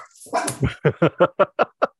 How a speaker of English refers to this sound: Your dog doesn't like that one. Your dog totally disagrees.